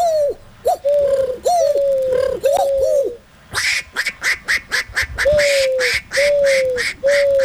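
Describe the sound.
A voice imitates a dove's cooing: a series of soft, low, wavering coos, broken midway by a burst of rapid, raspy pulses, then more coos, fairly loud.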